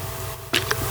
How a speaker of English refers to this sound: So I'm going to take a sip of water. Hang on.